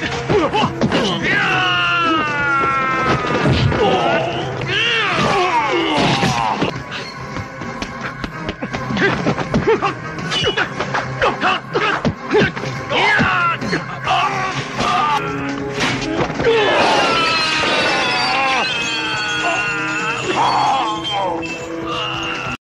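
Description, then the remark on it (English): Fight scene audio with repeated punches and heavy body thuds landing in quick bursts, mixed with grunts, groans and shouted vocal strain, loud throughout. “And again, like I mentioned earlier, just the impact of the hits.”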